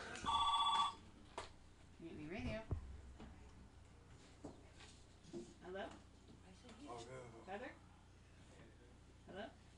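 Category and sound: signal or alarm, telephone ringing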